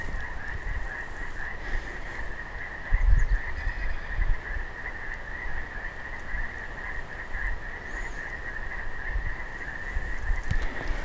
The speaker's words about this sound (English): Now those are our friends, brothers and sisters, mountain toads. Don't call them frogs.